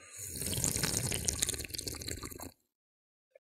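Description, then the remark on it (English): A loud, wet, deliberately exaggerated slurping first sip of a fizzy drink runs for about two and a half seconds, hissy and gurgling, then cuts off abruptly, followed by a faint single click. “Oh, you have to just slurp loudly and make lip sounds and all of that.”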